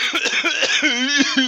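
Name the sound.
coughing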